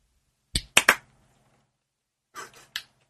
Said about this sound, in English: Are we just clapping now?